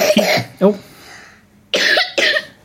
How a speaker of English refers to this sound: No one wants to hear you cough.